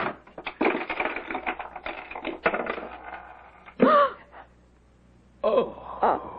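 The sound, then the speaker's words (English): A burst of metallic rattling and clicking as a key turns a stiff old lock, followed by two drawn-out, wavering creaks of a heavy door swinging open. “What fell from the door as it opened was a small skeleton, its hands resting on the inside of the door as if in a last plea for mercy.”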